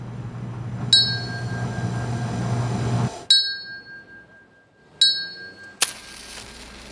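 A teacup is tapped with a spoon: three bright, ringing dings spaced a second or two apart, each with a sustained chime, then a sharper clink. A low rumble underlies the first strike.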